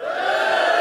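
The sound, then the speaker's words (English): A brief, loud burst of audience cheering as a vote for Celtic player Tom Rogic, a dense wall of many voices shouting and whooping together at a steady level for under a second, with no individual speech standing out. “A cheer for Tommy.”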